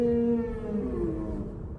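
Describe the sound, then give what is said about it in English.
A humpback whale of the Oceania population sings a long, moaning note that slides slowly downward, resonant and harmonically rich, sustained for under two seconds at steady moderate loudness with no voices present. “I'll be devoting the entire show to our friends and neighbors, the Oceania humpback whales.”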